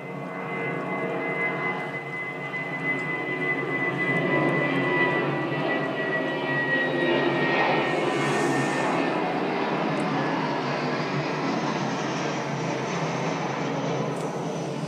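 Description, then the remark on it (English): A British Airways 737 jet airliner passes overhead near an airport, with a steady, broad engine roar and faint whining tones, swelling slightly around the middle and holding fairly loud throughout, with no one speaking. “That looked like a British Airways 737, so that didn't look too noisy.”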